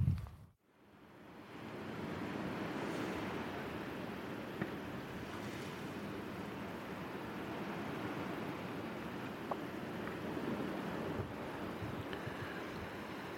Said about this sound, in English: That's the sound in front of me of the waves on Columbus Bay. And I've come now, having spent a bit of time recording a corncrake, to my great joy, I've come down to the very south end of Iona, southeastern point to St. Columbus Bay